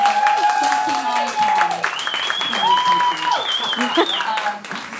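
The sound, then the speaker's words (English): A steady round of applause, dense clapping that holds at an even loudness for about five seconds, with high sustained whistling tones gliding over the noise. “Sorry, I need a round of applause for that.”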